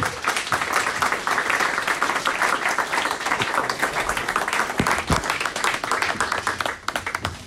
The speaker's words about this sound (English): You can give him a warm round of applause.